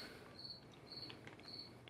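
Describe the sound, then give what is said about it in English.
A cricket chirps in short, evenly spaced bursts, three trills about half a second apart, steady over a soft background hiss. “Dude, you hear that cricket noise?”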